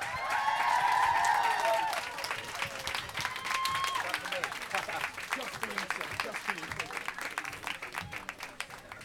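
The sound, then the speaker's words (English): A large audience at the Apple Store claps steadily in a dense, crackling wash of applause as film producer Simon Oakes and stars Jared Harris and Sam Claflin are welcomed, with shrill screams and whoops rising loudest in the first couple of seconds before the clapping eases slightly and continues. “They were only screaming for you, sir.”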